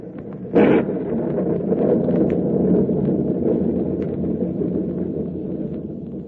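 A heavy, continuous storm roar at sea with thunder rumbles low and steady throughout, with a brief sharper crack near the start before settling back into the deep, unbroken rumble; no voices are heard.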